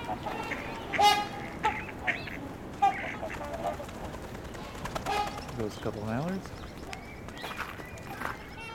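Mallard ducks quack in short, scattered bursts outdoors, a few sharper calls standing out against a busy background of other birds and ambient noise.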